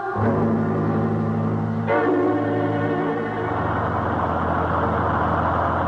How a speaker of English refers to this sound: We've been on this godforsaken bus for almost 20 minutes. It keeps on going without even a driver.